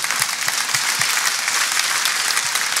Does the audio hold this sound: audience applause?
yes